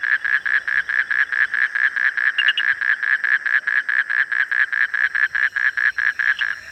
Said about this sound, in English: about a Sri Lankan cloud forest is the call of dozens of species of frogs. I think 15 is the maximum number of species I've found within earshot of any one place. And each frog's got a unique call.